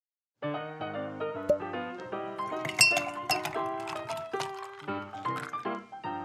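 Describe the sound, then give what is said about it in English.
A series of bright glassy clinks and taps, fairly loud, each ringing briefly as glassware knocks together in quick irregular succession while a glass of non-alcoholic cranberry and Concord drink is poured, with no one speaking. “Well, at least let me grab you a nice glass of cranberry and Concord.”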